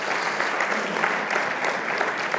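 A church audience breaks into sustained applause for two members of the church, a dense, steady patter of many hands clapping at once with no voices rising above it.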